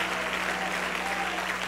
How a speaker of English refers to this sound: Could we give the Lord a great hand clap of praise this morning? For he is good.